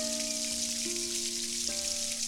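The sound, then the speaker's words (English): A small waterfall pours steadily into a pool, giving a constant bright, hissing rush of water with no breaks, while a few sustained low tones hum faintly underneath. “A few steps around the next bend in the path, you find the origin of the sparkle, a waterfall. Not very high, but falling steadily into a pool which then exits into a stream that flows beyond.”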